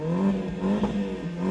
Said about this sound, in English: If you're hearing this, guys, we're literally in the car park because that's what I decided to record it today, and there's some fucking dickhead revving his Mini Cooper. If you heard that, he set his own alarm off.